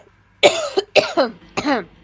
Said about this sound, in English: Hold on 1 second. I need a cough.